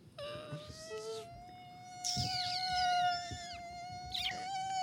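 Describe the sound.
A voice imitates a mosquito with a steady, thin buzzing whine that runs the whole time, while another voice makes three drawn-out, wavering meows imitating a jello cat over it, fairly loud.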